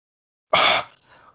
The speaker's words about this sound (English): Heavy breathing.